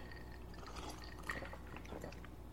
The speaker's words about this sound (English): Take this opportunity to sip.